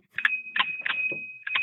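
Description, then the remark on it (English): A bell ringing: a steady, high, sustained ring with several sharp clanging strikes at uneven intervals, moderately loud, with no talking. “That's his bell.”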